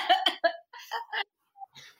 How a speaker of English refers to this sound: I'm coughing now, I need water.